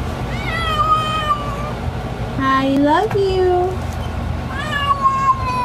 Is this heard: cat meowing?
yes